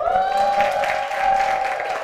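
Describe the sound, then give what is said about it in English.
An audience at a church service applauds steadily, a dense wash of many hands clapping with a sustained whistle-like tone running through it, loud and continuous for the whole stretch. “Is it okay if we just give a round of applause”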